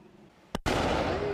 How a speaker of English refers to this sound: Lighting a firework through a traffic cone.